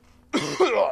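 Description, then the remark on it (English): A single sharp sneeze bursts out of near-silence, a sudden breathy blast followed by a brief voiced, tonal tail that fades off. “Bless you.”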